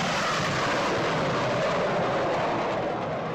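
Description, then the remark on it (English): A loud, unbroken roar of military jets flying over Chicago's two-day Air and Water Show along the lake at North Avenue Beach in August, a dense rushing wall of noise that holds steady for a few seconds with no voices. “Yep, Chicago's two-day air and water show along the lake.”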